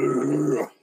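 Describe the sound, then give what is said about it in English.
A person imitates a toad's croak with one low, gravelly, growl-like vocal sound, held steady for just over half a second before cutting off abruptly. “Did you like my toad sound? I mean, that was a decent impression.”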